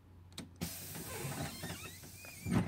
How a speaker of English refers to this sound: The sound of the tires of the bus stopping.